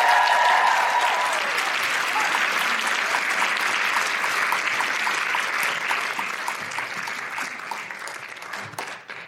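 A crowd applauds steadily, a dense wash of many hands clapping at once, loud at first and gradually thinning and fading toward the end. No one speaks over it.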